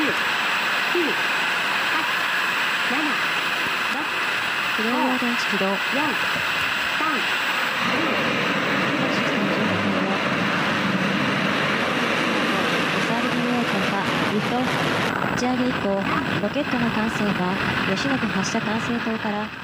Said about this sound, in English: Powered by its single LE-7 liquid hydrogen and liquid oxygen main engine, together with two strap-on solid rocket boosters, the 53-meter-tall H-2A blasted into the sky over the North Pacific Ocean.